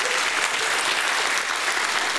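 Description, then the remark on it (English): An audience bursts into sustained, dense applause, a morning hand clap of praise to God, many hands clapping at once in a steady, loud wash of sound with no voices standing out. “Somebody give God a hand clap of praise this morning.”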